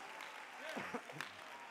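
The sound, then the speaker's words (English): A church audience claps hands in praise, a dense, steady wash of applause, with a voice calling out over the clapping partway through. “Somebody clap your hands and lift up a shout of praise.”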